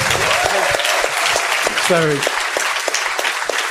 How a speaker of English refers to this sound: Round of applause for Alex Pleasels.